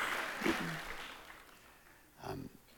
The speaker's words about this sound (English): This is my 9-year anniversary. And, yeah, well, thank you. Oh, thanks, Mom. Thanks, Mom, for starting the applause.